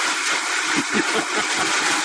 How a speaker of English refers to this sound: You're going to hear a quiet noise. Do not be alarmed. Should I turn off the live stream? Oh, well, if the live stream wants to hear a smoothie. Hold on. It's not... you may not even hear it.